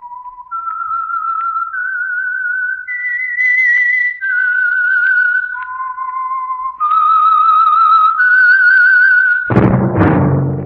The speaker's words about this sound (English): That whistle is your invitation to listen to the Household Finance Program, The Whistler.